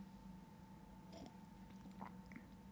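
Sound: sipping coffee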